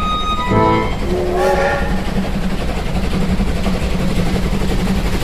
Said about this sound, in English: That 1 p.m. train out of Snootville Flats is right on time.